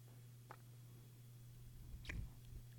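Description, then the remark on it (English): A female puppy about 2.5 months old gnaws on a jacket: a couple of soft, squishy chewing bites, the second louder, over a steady low electrical hum with no voices. “Chewing on my damn jacket.”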